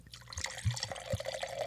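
Wine poured into a glass, a few deep glugs from the bottle over a steady trickle, the pour's tone rising as it fills. No voices.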